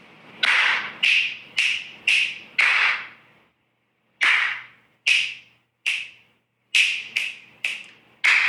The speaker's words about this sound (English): Oh, here we go. I have a loud snap and a loud clap. And I do this all day.